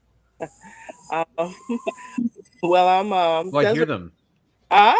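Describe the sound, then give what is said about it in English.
Chickens cluck and squawk in a string of irregular, fairly loud bursts, with a short pause before one last noisy outburst. “The chickens can hear my voice now.”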